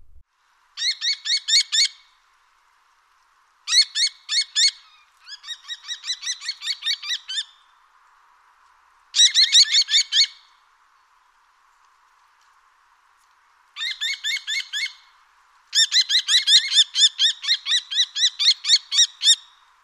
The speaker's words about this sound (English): The call of the kestrel is a loud kee, kee, kee, and it is said that it resembles that of a bell. It is this that gives them their Latin name, Falco tinnunculus, as tinnunculus is actually the word for little bell in Latin.